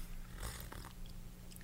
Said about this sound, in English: But I'm drinking tea, so maybe I have a little sip.